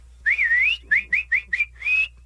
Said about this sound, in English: and I'm clapping, cheering, and I start whistling, like you do at a baseball game. Like a super loud one.